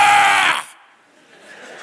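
One loud, strained groan from a single voice in prayer, lasting about half a second before cutting off abruptly into faint room tone.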